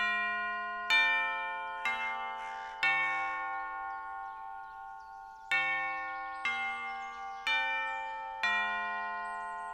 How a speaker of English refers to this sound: Well, here we are. I guess I'll ring the doorbell.